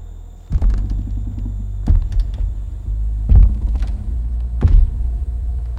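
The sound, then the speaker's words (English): Four heavy, slow footsteps of a massive man walking slowly down a wooden dock thud and creak at steady intervals, each with a deep low thump, over a constant low rumble; no voices. “The heavy creak of this massive man walking slowly down the dock.”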